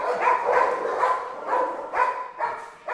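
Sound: dogs barking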